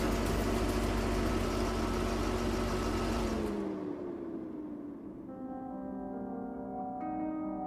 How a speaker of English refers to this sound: Zokhil slows the Subaru down, looking for a good spot to pull off the road